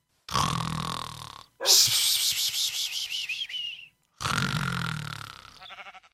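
Two drawn-out, nasal sheep bleats, fairly loud, separated by a stretch of high, wavering whistle-like tones. No one speaks.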